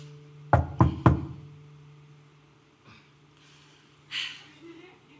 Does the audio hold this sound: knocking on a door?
yes